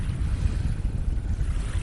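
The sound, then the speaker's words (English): Ocean waves at a beach on a sunny Sunday morning make a steady, rumbling wash of sound with heavy low-end roar and some wind buffeting, continuous and fairly loud throughout, with no voices. “I'm just down here letting the sun fall about me as I stand and watch the waves.”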